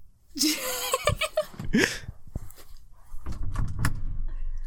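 A closet door is pulled open with a squeaky creak and a couple of knocks and rattles, followed by softer shuffling and what sounds like light laughter.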